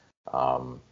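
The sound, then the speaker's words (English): A single sneeze, fairly loud, bursting out abruptly after a brief silence and trailing off quickly. “Bless you.”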